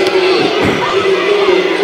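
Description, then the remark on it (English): A large basketball crowd boos a foul call loudly and steadily for about two seconds, a dense roar of many voices with a low sustained drone running through it. “Crowd doesn't like it, I'll tell you that much.”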